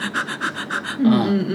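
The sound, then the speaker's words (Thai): A person imitates a dog panting with about seven quick, rhythmic breathy huffs, fairly loud, then a voice starts speaking. “มันเล่าว่าขณะที่นอนอยู่นั้นมันรับรู้ถึงเสียงหอบหายใจของหมา”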